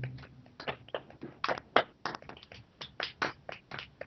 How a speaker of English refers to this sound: I think we should all give ourselves a round of applause. Golf clap.